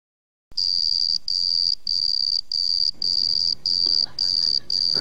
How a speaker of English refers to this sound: Can you make sure you edit in some crickets right there after you say that, please?